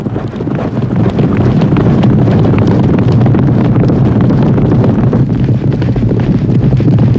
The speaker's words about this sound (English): this movie made that made it so famous was strapping microphones to the bottom of the horse so that when they're running, you can hear them breathing. And I had never thought about this, but I listened close and you hear them.